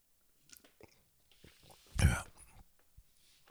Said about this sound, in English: Let me just take a quick sip.